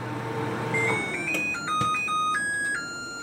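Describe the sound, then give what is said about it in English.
A new LG microwave plays a short electronic melody chime, a run of bright, stepping synthetic tones with a few sharp clicks, sounding over a low hum at the start. “As an example of a company taking things a little too far, here's someone on YouTube demonstrating the sound of her new LG microwave.”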